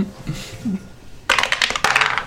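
After a moment of faint murmuring, dice rolled for a contested strength check to grapple clatter loudly down a dice tower in two quick bursts of rattling, knocking hits that tumble and settle.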